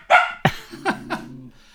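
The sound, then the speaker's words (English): A dog lets out two sharp, loud barks at a neighbour walking through the village singing, followed by a couple of softer, lower woofs trailing off, with no one talking. “Mari wants to bark him”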